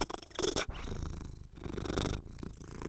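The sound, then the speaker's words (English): The speaker's pet cat purrs loudly right up against the microphone, a steady rumbling drone with rhythmic pulses and rustling breathy bursts, continuing throughout with no one talking. “hang on, here's my cat.”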